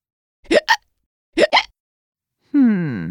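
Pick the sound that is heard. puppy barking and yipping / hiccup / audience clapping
hiccup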